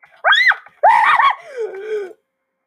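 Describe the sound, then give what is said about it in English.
A man lets out two sharp, high-pitched panicked screams in quick succession, then trails off into a lower, wavering groan, loud, with no other sounds around. “he's probably gonna scream.”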